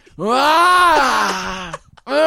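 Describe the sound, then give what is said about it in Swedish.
A voice imitates a guttural, werewolf-like howl: one long, loud, throaty wail that swells and bends in pitch before fading, then a second howl begins right after a short pause. “Alltså läten, gutturala läten från min, som jag inte vet var den kommer ifrån.”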